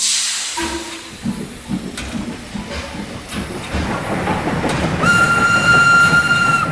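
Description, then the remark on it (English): A steam-powered toaster, with bread put in and the lever pushed down, hisses and chugs in a steady mechanical rhythm, building louder until a sustained, high whistle-like tone joins in near the end. No one speaks. “I'll put the bread in the toaster, push down the lever.”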